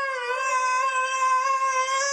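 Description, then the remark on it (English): Siberian Huskies howl in a long, steady, sustained note that holds nearly level in pitch throughout, loud, with no talking over it. “These are Huskies. Yes, Siberian Huskies. We like to refer to it as dueling Huskies.”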